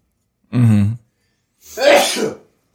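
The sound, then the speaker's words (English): A single sneeze: a short voiced, rising intake followed after a brief pause by a loud, harsh, breathy burst, with no talking around it. “Bless you.”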